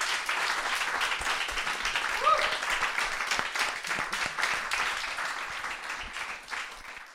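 An audience applauds steadily to thank a guest, dense overlapping claps forming a continuous crackling wash at an even loudness, with a brief whoop or cheer rising near the middle before the clapping tapers slightly at the end.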